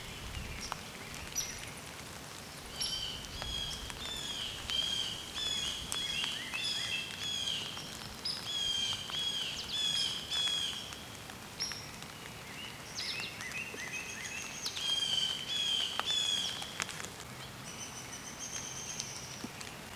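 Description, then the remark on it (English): A hairy woodpecker gives repeated high-pitched squeaky calls in short bursts throughout, set against a steady outdoor hiss that sounds like rain pattering. “Oh, and a hairy woodpecker too. That high pitched kind of squeak.”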